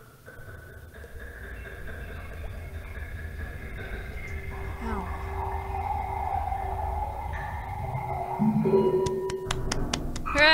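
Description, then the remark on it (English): Red wine pours through a huge, washy reverb, smearing into a dense, ringing drone with shimmering tones, ending in a run of sharp echoing ticks. No one speaks over it. “Reverb wine pours.”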